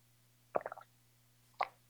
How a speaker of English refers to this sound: Sorry, I need another drink of water.